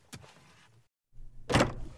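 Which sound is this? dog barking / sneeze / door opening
door opening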